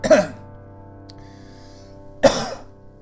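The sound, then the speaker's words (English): Two sharp sneezes, one right at the start and another about two seconds later, each a sudden breathy burst with a quiet hum in between. “Bless you.”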